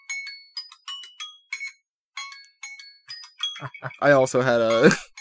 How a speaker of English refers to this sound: I also had a timer up. I think that I started slightly before yours. I see. I just let the audience hear the timer jingle a little bit. It's a default jingle, everybody. I didn't pick it. Okay? It's just default phone jingle.